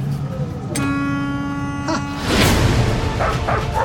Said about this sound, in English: Hey, what's all the fuss? I learned to talk dog. I don't think it likes me.